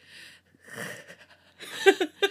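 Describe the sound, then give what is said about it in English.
Heavy, ragged panting breaths, several in quick succession, turning louder and wheezier toward the end, with no talking. “Feral breathing.”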